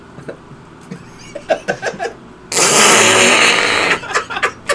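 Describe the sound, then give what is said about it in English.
A loud, sustained wet fart noise made by squeezing licked hands together, lasting over a second, preceded by a run of short, sputtering smacks. “Dude, I'm so good at fake farts. The trick is licking your hands.”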